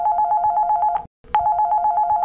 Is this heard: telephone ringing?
yes